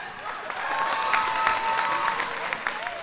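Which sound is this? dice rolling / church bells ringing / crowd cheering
crowd cheering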